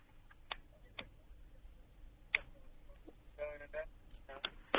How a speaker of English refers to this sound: He's put the phone down. He's put the phone down.